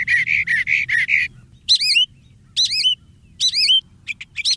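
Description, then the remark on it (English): A northern mockingbird sings mimicked calls, switching between distinct phrases: a run of rapid buzzy repeated notes, then three bright rising whistled phrases, and quick sharp chips at the end, over a low rumbling background. “Well, the mockingbird sounds a particularly appropriate note for our trip beyond the headlines today with Peter Dykstra.”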